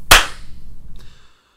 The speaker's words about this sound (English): Should we do a clap? Yeah, let's do a clap now at about 3 minutes. All right. Yep. 3, 2, 1.